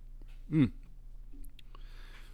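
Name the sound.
sipping beer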